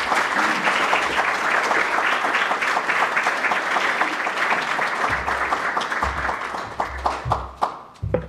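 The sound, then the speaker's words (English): Sustained audience applause welcoming Pakistan's Foreign Minister Qureshi to the stage at the Center for Strategic and International Studies, a dense steady wash of many hands clapping that thins toward the end into sparser, more distinct claps with some low rumbling underneath. “So could I ask you, with your very warm applause, please welcome to the stage His Excellency, the Foreign Minister of Pakistan, Minister Qureshi.”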